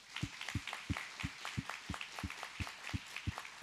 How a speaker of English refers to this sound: So let's welcome our first-time guests, both online and here in the house, with a hand clap.